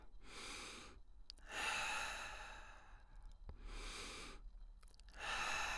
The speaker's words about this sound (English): So close your eyes, take in a few deep breaths.